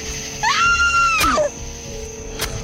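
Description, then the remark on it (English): A woman lets out a single long, piercing scream that rises sharply, holds at a high pitch for about a second, then breaks off, loud with no talking. “When I heard her scream, it sent chills up my spine.”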